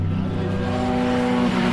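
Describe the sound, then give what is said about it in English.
A chrome number 50 Corvette race car roars past, its loud engine a steady, buzzing drone that shifts slightly in pitch as it passes, with no voices heard. “The chrome car, the number 50 Corvette.”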